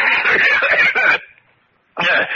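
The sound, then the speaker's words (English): A harsh, raspy coughing fit from someone with a cold, a rapid series of loud hacks lasting about a second, then a brief silence before another burst of coughing starts. “Excuse me, Montresor. I have a cold.”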